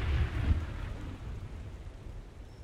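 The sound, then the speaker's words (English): A deep roll of thunder rumbles low at the start and slowly fades, while a steady wash of rain hisses underneath throughout, a storm over a river where a raft is tied up at the riverbank. No voices are heard. “And then they tried to get some sleep with the storm all around them.”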